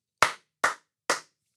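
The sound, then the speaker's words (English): Three sharp, loud hand claps at a steady pace, made in a space to test its room echo before recording, each followed by a short decaying ring of room echo, with silence in between and no voices. “Try a few loud claps and saying hey sharply in the space.”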